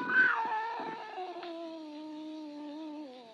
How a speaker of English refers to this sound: Slowly, it moved out into my line of vision. It was a cat. That scrawny cat, Clara, that Mother Willis had sneaked to Fort LaGuira.